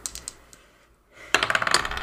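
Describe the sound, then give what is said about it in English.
A few light clicks, a brief lull, then a burst of rapid hard clattering as rose gold dice are rolled for a perception check, tumbling and skittering across a tabletop, fairly loud, settling after about a second. “Make a perception check. I don't know which dice to use. Do the rose gold, do the these ones.”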